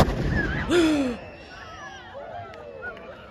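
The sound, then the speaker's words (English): A single deep, booming blast from an old cannon being fired for the first time in 50 years rings out near the start, trailing off as a crowd gathered at an intersection carries on with voices and excited shouts in the background. “Trying to fire the cannon for the first time in 50 years.”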